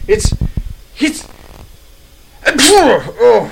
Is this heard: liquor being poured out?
no